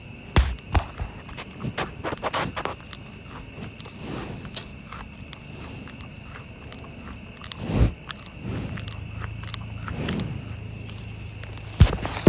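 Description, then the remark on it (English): Rain pattering on the tin roof of a house at 8:40 on September 28, in sparse, irregular taps and sharper clicks, over a steady high insect trill and a low background hum; no one speaks. “It's 8:40 on September 28th and it is raining. There are some little tin roof sounds from my house.”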